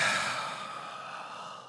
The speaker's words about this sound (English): gave a nice, solid yawn after